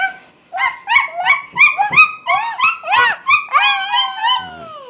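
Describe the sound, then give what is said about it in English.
A high voice imitates a dog, yipping in a quick run of about ten short, excited barks before ending in a longer, falling whine, all fairly loud. “What does a doggy sound like?”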